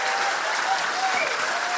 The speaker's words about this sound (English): So will you please give a massive round of applause to my guest, Virginia Ironside, ladies and gentlemen.